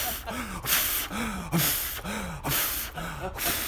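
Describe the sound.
A voice imitates the heavy breathing of The Berserker, rasping gasps for air, about four loud breaths in a steady in-and-out rhythm, some with a groaning vocal edge, with no other talk.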